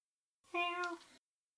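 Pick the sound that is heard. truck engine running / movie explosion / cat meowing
cat meowing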